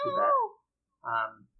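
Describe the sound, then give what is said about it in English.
A cat meows twice: a drawn-out, wavering meow followed after a short pause by a briefer, slightly rougher one, both fairly clear with nothing else in the background. “Did the dog go crazy again? Or was that the cat?”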